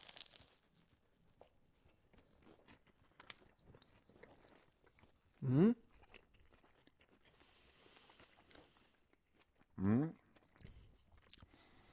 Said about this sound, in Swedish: Nu varnar vi då lite för smask kanske. Nu kan det bli lite smask i ljudet.